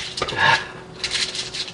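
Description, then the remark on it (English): An ashtray is set down on a table with a quick, hard clunk and a brief faint ring, followed by soft scraping and rustling as it settles. “Here's the ashtray.”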